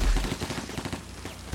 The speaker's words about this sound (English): You can hear the mini. See, everyone's favorite minigun.